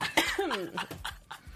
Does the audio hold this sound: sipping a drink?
no